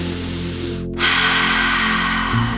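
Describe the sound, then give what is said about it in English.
A deep, drawn-out breath in during a guided breathing meditation, rising after a brief pause and filling the air with a steady rush, over a soft sustained musical drone. “And just breathing again.”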